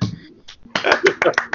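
A single person claps several times up close, the sharp slaps coming in a quick, slightly uneven burst after a brief murmur of voice at the start.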